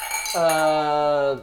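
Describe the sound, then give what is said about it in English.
Wine glasses clink together in a bright toast, their high ringing tone lingering for about a second alongside a steady, sustained lower tone before fading out. “And cheers.”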